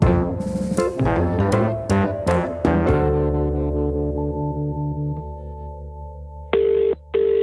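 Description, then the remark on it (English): A rapid run of bright keypad tones as a number is dialed, then a steady hum, followed by two short bursts of a phone ringing on the line, a call to Margaret Elliott, chief of the Elliott Clan Society. No one speaks. “And so, I phone Margaret Elliott, chief of the Elliott Clan Society / webpage.”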